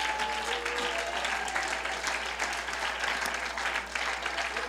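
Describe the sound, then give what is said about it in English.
An audience at an evening worship service claps their hands after a prayer, a steady, dense wash of applause that holds at an even loudness throughout, with no voices standing out. “Why don't you clap your hands tonight?”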